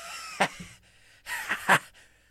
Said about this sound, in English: Sorry, wrong pipe.